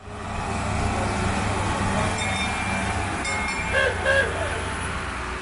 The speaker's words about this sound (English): All aboard. We're on the little train that goes from Jerusalem's Jaffa Gate and weaves through the sacred old city down to the Western Wall to pray.